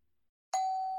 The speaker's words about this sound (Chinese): 叮咚，这时候门铃响了。